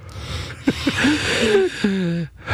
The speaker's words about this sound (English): Like, I can hear you breathing right now.